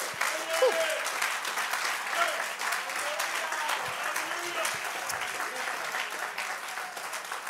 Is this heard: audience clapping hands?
yes